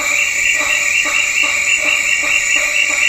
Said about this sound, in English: This is what the hammerhead bat sounds like, although it's not a great audio clip. At least it gives you an idea of what these bats sound like.